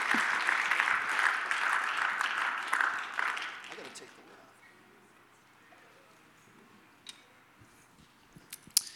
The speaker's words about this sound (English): In Jesus' name, would you clap your hands to the Lord as you make your way back to your seats?